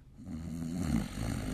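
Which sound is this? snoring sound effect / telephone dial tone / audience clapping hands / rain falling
snoring sound effect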